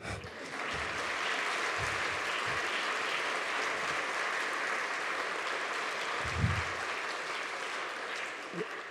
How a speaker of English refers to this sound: I also want to acknowledge that this past weekend, last Friday, in the Solemnity of the Sacred Heart, we ordained 4 new men to the priesthood for our diocese. Yeah, that's a good time to clap.